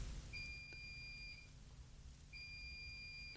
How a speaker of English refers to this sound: And then the washing machine is beeping hysterically. And you have to get up and turn it off because otherwise it really annoys you. And now when I want you to beep to demonstrate, there you go.